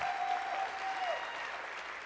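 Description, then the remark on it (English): Steady audience applause for the sound crew working behind the scenes, a dense crackle of many hands clapping at an even, moderate level throughout, with a faint sustained tone sliding down partway through. “So let's give them a big applause because they're frantic.”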